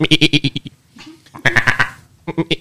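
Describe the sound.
A person imitates a goat, letting out three loud, quavering bleats with short pauses between them, each one a rapid warbling pulse of voice.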